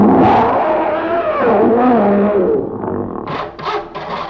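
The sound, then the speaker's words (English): A lion roars loudly, a deep, rough growl whose pitch rises and falls over a few seconds before breaking into short, huffing grunts at the end. “It's a lion.”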